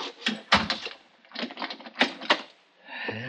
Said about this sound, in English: You better close that door and lock it, Mr. Engel.